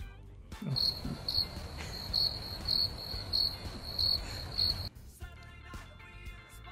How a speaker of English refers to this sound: I tried to find some Oklahoma jokes to put here, but there weren't any that were funny, so, well, that. Crickets.